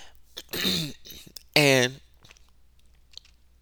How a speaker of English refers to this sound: And I'm sorry for clearing my throat repeatedly.